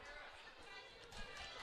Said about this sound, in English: Select girls stomp on the stands to distract her.